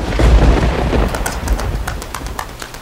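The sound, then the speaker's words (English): A deep rumble of thunder from a thunderstorm swells at the start and slowly fades, with scattered sharp crackles and ticks over the lingering low roll. No one speaks. “The sky is falling and I'm afraid of thunderstorms.”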